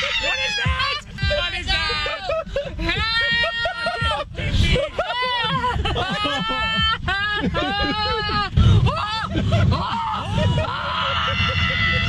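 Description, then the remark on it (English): A woman wails and cries out in panic inside a car going through a car wash, loud and nearly nonstop, her voice rising and breaking over the steady low mechanical rumble and spraying noise of the car wash. “Not even human noises coming out of that lady.”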